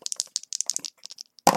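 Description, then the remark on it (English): Two dice rattle and clatter across a hard surface in a quick burst of small clicks, ending with a sharper, louder knock, fairly crisp, with no voices. The dice are rolled for an intimidation check with advantage in a game. “Advantage is when you basically roll 2 dice”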